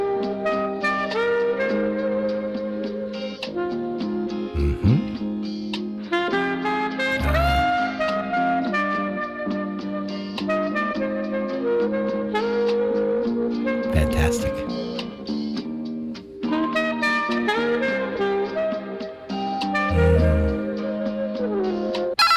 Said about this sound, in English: Stoff now in post. He's going to insert music here. Our on-hold music. Waiting for the Montreal Canadiens. Max Domi.